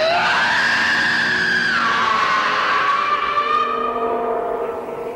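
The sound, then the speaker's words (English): A man, William Shatner in a film scene, lets out a long, loud, sustained scream that holds high and then drops in pitch, straining for several seconds with no other voices or sounds around it. “And Shatner's scream here is fantastic.”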